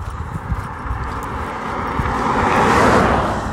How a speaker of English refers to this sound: I didn't think there'd be this much traffic this morning. Sorry about that.